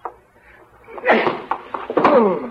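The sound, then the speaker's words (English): A scuffle of heavy thuds of punches landing on a man, several blows in quick succession with grunts and strained vocal sounds mixed in between the hits. “I've never seen a guy that liked being hit so much, or that I liked hitting so much.”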